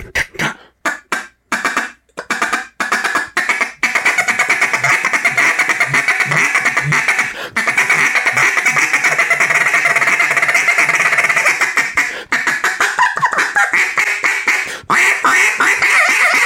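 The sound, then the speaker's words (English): A duck call plays a few sharp, separate quacks, then runs into a long, fast, continuous feed chatter of short clipped quacks, loud, with no talking. “What people feed chatter, all that is short quacks.”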